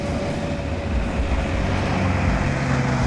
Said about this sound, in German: Als sie die Freigeiststraße erreichten, fuhr Lothar Sickelgrub gerade mit seinem neuen Auto vorbei. Er fuhr viel zu schnell.